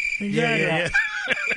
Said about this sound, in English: I hear dead silence. Yeah, on the air. You hear the crickets. The crickets.